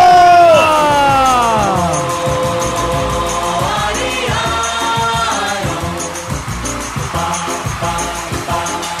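crowd cheering

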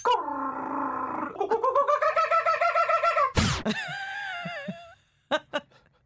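kookaburra call

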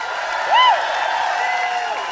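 audience applause and cheering

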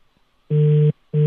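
telephone tone

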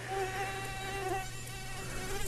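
mosquito buzzing

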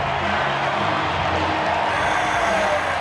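baseball stadium crowd cheering

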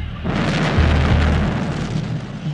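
massive explosion

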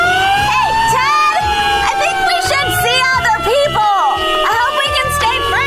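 fire engine sirens

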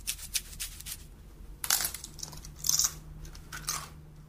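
crunching potato chips

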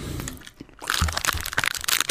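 chewing crunchy food

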